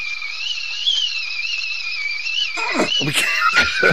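A thin, high nasal whistle made through a person's nose holds steady for a couple of seconds, wavering slightly in pitch, before choppy breathy bursts that sound like laughter break in over it.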